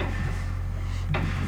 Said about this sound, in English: You hear them, like, banging on the walls.